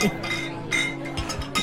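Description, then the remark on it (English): Glass pieces clink together several times in an irregular rhythm as someone smashes glass together, each bright tap leaving a short high ring, over a steady low background hum. “He's just smashing glass together.”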